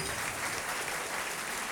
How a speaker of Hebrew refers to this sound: ירי כפיים. אני צריך להמציא לעצמי פה איזה אפקט עם כפיים, כל פעם שאני אומר משהו, בשבילי.